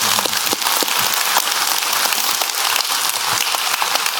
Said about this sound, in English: Yeah, you guys can clap for him.